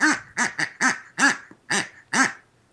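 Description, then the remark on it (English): A duck-like quack, made by a pig, sounds seven times in a quick, fairly even series, each call a short nasal burst, clear with no talking over it. “It's a pig, but it's a duck sound.”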